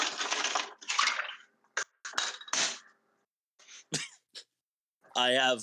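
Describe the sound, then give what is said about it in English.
People washing dishes in a kitchen: hissing gushes of running water broken by sharp, irregular clinks and clatters of plates, with a person starting to talk at the end. “I'm in a kitchen right now and people are doing dishes behind me”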